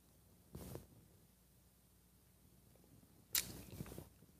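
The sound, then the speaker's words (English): Two short, airy slurping sips of coffee from a mug, spaced a few seconds apart, the second louder with a sharp hissing onset, over a faint low background hum. “If you were watching instead of listening on the podcast and wishing we weren't making slobbering sounds on your audio.”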